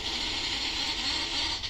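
The N74B66TU V12 engine of a BMW G12 M760Li xDrive holds a high, steady rev, its buzzy, raspy whine running loud and unbroken for the whole moment, with no voices over it.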